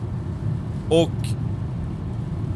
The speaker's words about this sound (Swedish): För om ni sitter nu och lyssnar i bilen, så lyssnar ni på mig som också är i bilen.